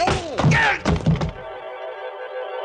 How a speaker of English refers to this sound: The front of his gun snapped against the side of my head, and I went down to my knees.